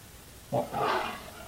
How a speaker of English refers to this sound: I think that's a jaguar. That sounds like a jaguar. It's a little hard to hear with music.